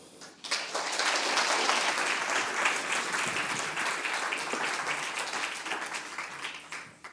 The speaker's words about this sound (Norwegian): Da ønsker jeg dere gir henne en varm applaus.